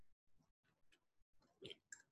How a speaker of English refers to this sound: I just have to have a sip of water here.